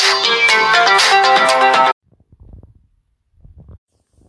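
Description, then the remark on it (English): A loud, bright melodic phone alert plays for about two seconds and then cuts off abruptly, followed by a few faint, low rumbling noises and near silence. “Sorry about that. I forgot to turn off my notifications.”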